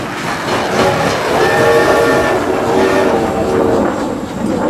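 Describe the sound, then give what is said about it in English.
A space train blasts off into the sky with a loud, steady roar, surging forward, with a sustained horn-like tone rising over the rumble midway through before the noise settles back to a heavy drone. “Everyone slammed back into their seats as the space train blasted off into the sky.”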